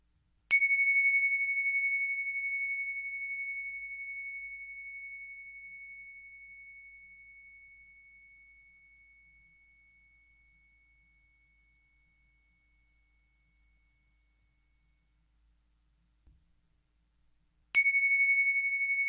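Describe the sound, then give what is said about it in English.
Two strikes of a meditation bell, each a bright, clear ring with a long, slowly fading sustain; the first tone rings out for many seconds before the second strike arrives, with no talking. “I'll ring the bells twice, you listen to them, and let them serve as a mini meditation to anchor your attention more deeply in the present.”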